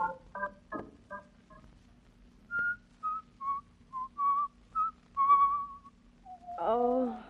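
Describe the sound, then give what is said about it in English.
Someone whistles a few bars of "Turkey in the Straw", a run of about nine clear, bright notes stepping up and down in a bouncy rhythm. Brief voice sounds come just before and right after. “Oh, stop whistling that turkey in the straw.”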